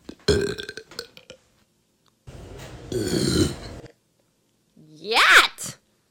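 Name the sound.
person burping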